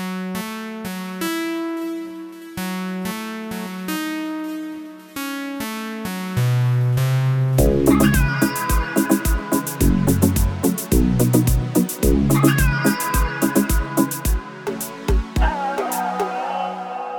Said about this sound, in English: It's now on synths, a variety of synths, and also Cat for the vocal riffing.